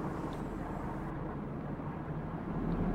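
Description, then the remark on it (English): A large elevator, big enough to carry a tank, plunges downward fast, accelerating to near free fall, giving off a steady, loud low rumble and whir of machinery that holds constant for the whole stretch, with no voices over it. “The car rapidly descends, accelerating to what feels like a free fall.”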